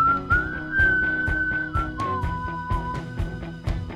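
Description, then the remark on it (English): Two people whistle in harmony, their tones sustained and sliding gently, over a steady backing track with a thumping beat and chords. The whistling is clear. “A little whistle harmonizing.”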